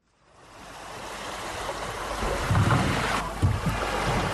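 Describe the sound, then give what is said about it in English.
Fishing boat engines drone low and steady over open water as the boats arrive back at Innao, a coastal fishing village near Cameroon's western border with Nigeria, rising out of silence with the wash of waves and wind, fairly loud, with no one speaking. “Fishing boats arrive back at Innao, a coastal village near Cameroon's western border with Nigeria.”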